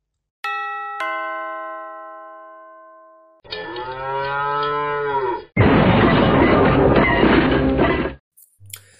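A doorbell rings twice with ringing chimes, then a loud cow moo follows, ending in a long, raspy bellow before a brief clatter, a gag sound effect of a cow bursting into a room.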